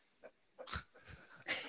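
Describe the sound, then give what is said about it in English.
A dog whimpers and wheezes, letting out four short, breathy, snuffling bursts at irregular intervals, fairly quiet, with no talking. “Hey, look at the cute doggy.”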